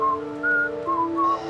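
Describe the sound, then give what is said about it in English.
A person whistles a short, wavering, annoying tune of a few held notes that shift up and down in pitch, heard clearly with no talking over it. “When in doubt, whistle an annoying tune.”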